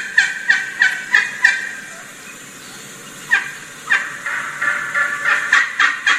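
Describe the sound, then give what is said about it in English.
Turkey hens calling: one hen gives a run of sharp, evenly spaced yelps and stops as soon as another hen starts calling, then the other hen's series of yelps, clear with no talking. “You hear how she stopped as soon as another hen started calling?”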